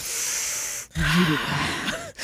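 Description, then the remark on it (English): A voice imitates heavy, dramatic breathing: a long hissing exhale, then a sharp gasping inhale with a throaty edge, close and loud, with no speech. “that's what we're talking about, Grissom breathing”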